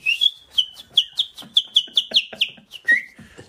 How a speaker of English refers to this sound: I heard you were an awful man for whistling. I often done that up in Dublin.